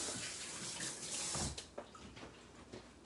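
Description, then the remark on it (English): A tap runs with a steady hissing rush of water filling an instant macaroni and cheese cup up to its water line, then shuts off after about a second and a half, leaving a few soft clunks. “Recommendation, there's a water line in there. Don't fill it up with, empty water, or don't fill it up all the way.”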